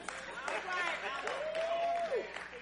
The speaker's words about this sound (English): I got 14 claps. I'll take all of them.